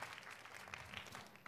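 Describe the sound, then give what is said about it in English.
A crowd claps for the Lord together in a steady, dense patter of many hands, the applause holding at an even level throughout with a sharper burst near the end. “Oh, somebody is giving the Lord a clap of you.”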